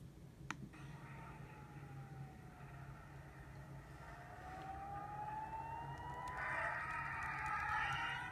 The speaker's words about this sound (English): Sirens blaring there as deadly violence is escalating in the Middle East again, and rockets and missiles are lighting up the night skies in Israel.